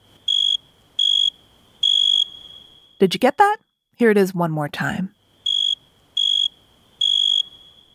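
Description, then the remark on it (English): A cricket chirps by rubbing its wings together in steady, shrill pulses, three evenly spaced bursts, then a voice speaks briefly before the same three-pulse chirping pattern repeats, clear. “Crickets make that chirp chirp sound by rubbing their wings together.”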